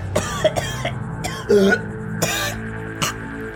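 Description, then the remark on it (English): A person imitates a woman who falls over and violently coughs blood, a rapid series of harsh, raspy bursts, several loud hacking coughs in an uneven rhythm over about three seconds. “She begins walking out of bed and she falls over and suddenly starts coughing blood.”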